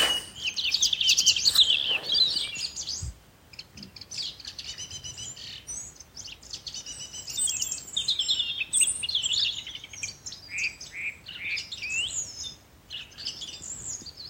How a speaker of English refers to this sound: There's a lot of bird chatter happening this evening, isn't there?